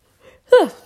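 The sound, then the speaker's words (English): A short yawn: a faint breath, then a loud voiced exhale whose pitch slides steadily downward and trails off within about half a second. No one speaks. “My yawn isn't going to make me re-record my 8-minute podcast.”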